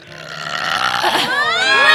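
A long, loud belch rumbles and rises in pitch, stretching out over about two seconds and swelling louder toward the end, up close with no talking.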